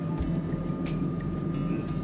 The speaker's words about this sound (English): Yeah, it's Wednesday. We're on the train. I already said that. Here's some train sounds.